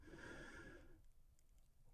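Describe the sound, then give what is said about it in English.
A person voices a single breathy inhaling sound, fairly loud, lasting about a second with a faint hum in it, then fading to near quiet. The inhaled breath stands for the letters YH of the Hebrew divine name YHWH. “YH sounds like inhaling.”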